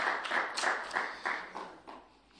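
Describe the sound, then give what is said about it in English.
Scattered applause from a small audience, a steady patter of hand claps at moderate volume with loose, uneven rhythm, slowly thinning out toward the end. No one speaks. “Okay, they're still clapping, so I guess I'll come along.”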